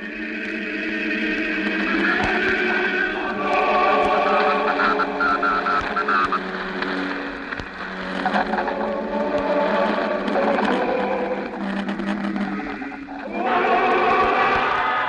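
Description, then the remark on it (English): A loud, sustained roar of a crowd in New Mexico as the crew of the spaceship Venture walks up the catwalk to the ship, thick and steady with a dense layered tone, swelling slightly in places and never dropping away. “We're sorry to cut in, but that roar you're hearing, the roar of the crowd, it's the moment we've been waiting for.”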